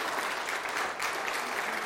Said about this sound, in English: I'd like us just to give a round of applause to God again for all that he's doing and how he's using us. Let's do that now as a sign of worship.